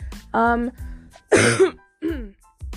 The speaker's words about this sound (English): Oh my god, sorry for coughing so much.